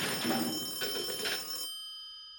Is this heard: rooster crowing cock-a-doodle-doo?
no